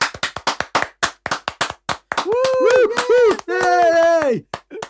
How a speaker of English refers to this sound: Ready? Just go. Yay! I think you need loads of claps. Go for it.